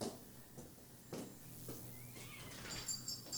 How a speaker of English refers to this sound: bunch of cats fighting outside.